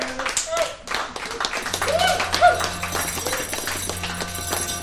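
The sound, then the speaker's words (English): A round of applause, with dense, steady clapping from a small crowd filling the whole stretch, moderately loud, with a few whiny, voice-like tones mixed in. “And a big round of applause for yourself.”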